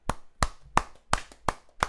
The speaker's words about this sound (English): Let's clap it up, man.